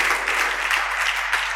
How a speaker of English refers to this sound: Can you clap your hands again?